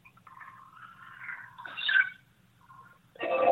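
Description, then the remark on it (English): A recording from the Mariner 10 space probe: warbling, whine-like tones drift and waver over a low steady hum, swelling into a brighter squeal midway, then a sudden loud, dense burst of sound at the end. “Okay, this is another recording about the same time from the Mariner 10.”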